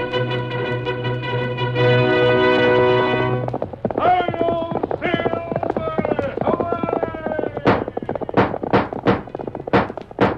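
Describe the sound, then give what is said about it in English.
Galloping hoofbeats of the Lone Ranger's horse Silver come in toward the end as a quick, steady run of sharp thuds, following a sustained tonal blare and a wavering, voice-like cry. “Horse with a speed of light, a cloud of dust, and a hearty high old silver, the Lone Ranger.”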